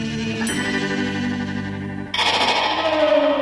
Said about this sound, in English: They use guitars and reverb and God knows what else to make that noise. It's at least a couple of layered tracks in stereo with some right-to-left panning.